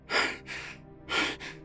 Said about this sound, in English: sat straight up in bed, panting as the dream fell away from him.